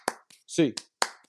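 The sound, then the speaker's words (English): A handful of sharp, bright hand claps, eight in all, land in an uneven rhythm, with a short burst of a man's voice counting them off between them. “8 clap time, baby. And 1, 2, 3, 4, 5, 6, 7, 8.”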